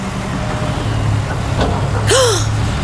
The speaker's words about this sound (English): Is that a dump truck? It is! Look, it has lots of materials in the back and it's taking them over there.